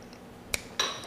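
Two bright clinks of shot glasses of Dominican rum tapped together in a toast: a short sharp tap, then a second, fuller chime that rings briefly. No one speaks.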